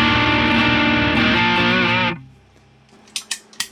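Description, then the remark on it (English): A loud electric guitar through one side of the D&M Drive overdrive pedal on its own, drive at 2 to 3 o'clock, tone at noon, level at 10 o'clock, rings out thick and gritty for about two seconds, then is abruptly muted, leaving near silence broken by a few sharp, quick clicks. “And then the D&M drive. The mix side on his own.”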